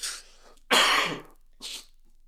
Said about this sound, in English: Sorry about that. That might be the first of a few coughs that you hear. I got through like 10 minutes without coughing. That's good.